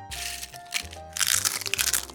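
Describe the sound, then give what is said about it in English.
Loud, crisp crunching of a hard taco shell being bitten and chewed, with bursts of brittle cracking that come in irregular waves over about two seconds, no talking. “please don't eat taco shells out of my hand.”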